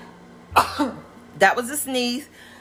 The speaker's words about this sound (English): That was a sneeze. Excuse my sneezes. Like I said, my podcast is real and I'm not going to edit those sneezes out. It's just a sneeze.